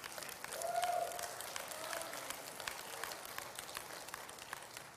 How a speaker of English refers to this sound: Let's all clap for that.